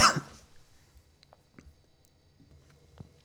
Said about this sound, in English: Wow, I'm back here after 5 minutes of coughing. Nothing like mentioning Moses's speech impediment and then being unable to speak.